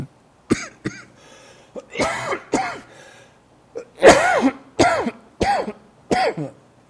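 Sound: coughing and throat clearing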